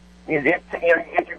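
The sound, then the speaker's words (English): A thin, tinny voice comes through a cell phone line, breaking up into choppy bursts with short dropouts between them, with a steady low hum underneath. “Okay, no, I'm sorry, your cell phone's kind of dropping out there.”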